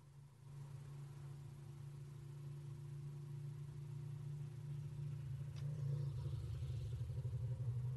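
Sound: loud motorcycle passing by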